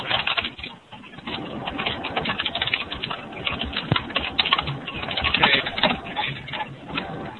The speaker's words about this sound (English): I think I heard something, other than just the typing.